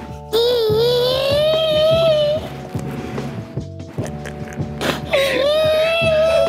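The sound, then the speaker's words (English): A man lets out two long, loud, high-pitched screams, the first lasting about two seconds and the second starting after a short gap, both strained and wailing with a slowly rising pitch. “He's gonna scream again.”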